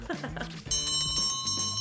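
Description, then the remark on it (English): A closing bell rings in a fast, steady rattle of bright metallic strikes with a sustained high tone, starting loud after a brief moment of a voice talking. “But what do you know? There's the closing bell.”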